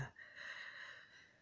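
human body sound, sniffling

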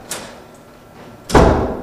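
household object, door opening

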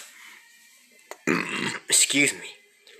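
human body sound, hiccup

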